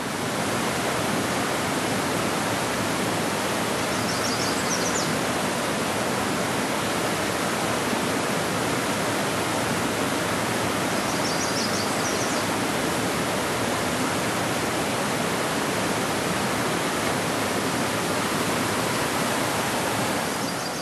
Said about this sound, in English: That's the Virgin River. And by the way, just outside the park, it rolls nicely by a brew pub, which I visited.